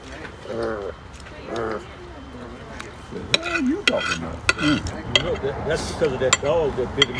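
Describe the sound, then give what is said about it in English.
A utensil clinks against dishes in a scattering of sharp, bright taps, irregular and fairly loud, mixed in with people talking throughout. “Can you put down that utensil long enough to hand me another napkin?”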